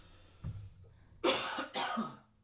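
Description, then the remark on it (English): A person coughs twice in quick succession, two harsh, breathy bursts, after a brief low throaty sound and otherwise quiet surroundings. “Oh, we get to turn it down when it's you coughing?”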